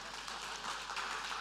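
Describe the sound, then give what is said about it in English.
A short burst of steady applause from a small group, many hands clapping together in a dense, even patter at moderate volume, with no voices over it, applauding someone who scored three goals. “so I think that deserves a round of applause.”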